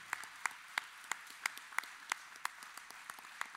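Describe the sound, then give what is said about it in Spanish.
A church audience applauds together in welcome in a steady rhythm, sharp unison claps landing about three times per second over a dense wash of scattered clapping, moderately loud, with no talking. “Y con este aplauso le damos a todos la gran bienvenida.”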